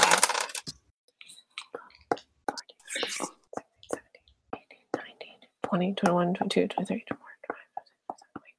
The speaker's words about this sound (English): Gotta roll some dice. Oh my god, that's a lot of dice. One second.